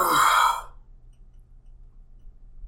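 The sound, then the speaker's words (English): A single breathy yawn exhales loudly for about half a second, then fades into a quiet hum with no talking. “Yeah, no, sorry, just yawned.”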